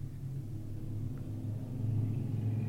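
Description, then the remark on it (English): A deep, steady, extremely loud rumble of several motorcycle engines as a motorcycle gang drives past a house in nice weather, the throaty drone swelling slightly louder toward the end, with no voices. “It's nice weather out today, and we have a motorcycle gang driving past my house.”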